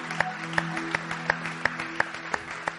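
A church audience gives the Lord a hand clap during a morning service, clapping together in a steady, even rhythm. About eight sharp claps come in a few seconds over a soft, sustained low musical tone.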